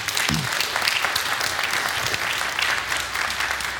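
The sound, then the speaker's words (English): A roomful of people at a worship gathering claps steadily for several seconds in appreciation of the design team, a dense, even wash of applause that holds at a consistent level without cheering or voices. “So I just want to maybe give a round of applause for our design team.”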